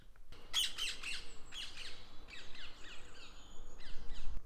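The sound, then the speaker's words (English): Harsh, repeated bird squawks recorded with a microphone held out of a window, in loud bursts of raspy, high-pitched calls, separated by brief pauses, over a steady low background rumble with no talking. “I'm just going to put the mic out the window so you can get some idea of how mad this sounds.”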